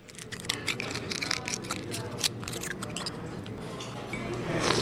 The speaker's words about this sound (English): The lunch crowd at Hog Island Oyster Company on the famous San Francisco Wharf slurps down oysters just as fast as the waiters can shuck them.